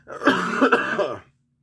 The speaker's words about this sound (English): So, yeah, excuse that cough.